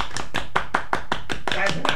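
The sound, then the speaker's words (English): A small group gives a round of applause, clapping hands in a quick, steady rhythm, roughly ten sharp claps in two seconds, fairly loud, with a brief voice rising under the last few claps. “Shall we give him a round of applause? Yeah, let's do that.”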